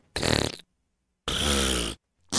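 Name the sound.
fart sound effects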